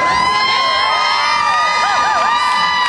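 A concert crowd at an evening show keeps up a loud, continuous roar of cheering and high-pitched whoops and shrieks, with wavering voices rising and falling and no individual speech standing out.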